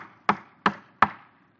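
Three firm knocks on Daniel's door in the middle of the night, evenly spaced, each a sharp rap with a short resonant decay, heard alone with no voices.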